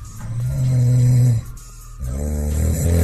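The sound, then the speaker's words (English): Deep, rumbling snoring from a sleeping person: one long rasping breath, a brief quiet pause, then another throaty snore starting up, with no talking. “That's just regular snoring, right?”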